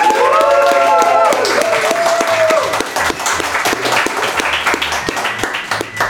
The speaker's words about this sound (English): That was a very good round of applause. Well done.